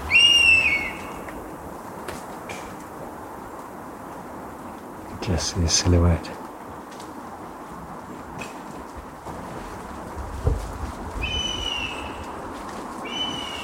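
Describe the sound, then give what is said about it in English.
A honey buzzard in a forest in South Wales, during the ringing of honey buzzard chicks, gives high, thin whistling calls, one at the start and a longer run near the end, over a steady outdoor hiss with people talking quietly in between. “Yeah, you've never heard one just flying about and calling. It's a proper whistle.”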